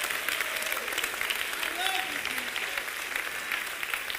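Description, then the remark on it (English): A church audience claps their hands to the Lord in a steady, dense wash of applause that fills the whole clip, with faint voices rising briefly beneath the clapping. “Come on, clap your hands like you believe me.”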